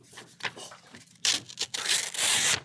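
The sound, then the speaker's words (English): A piece of paper being cut: a few soft, scratchy snips at first, then louder, longer crisp rasping strokes with brief pauses between them, no voices. “Can I cut this piece of paper?”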